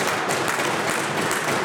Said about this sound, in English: The reality is people can't afford to live here, Mr. Speaker. Go ahead and clap. Yes, clap to the fact that you've got us to be the most unaffordable jurisdiction in North America when it comes to housing.